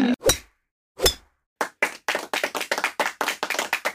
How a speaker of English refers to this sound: I feel like we should golf clap. Yay. I think there's a sound I can input. Here we go. We'll add in a golf clap. Yes. This is my note to add one in.